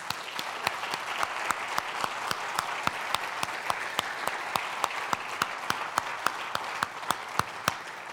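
An audience applauds steadily, a dense wash of clapping with a few sharper, evenly spaced claps standing out on top. It holds at a fairly even loudness throughout, with no voices.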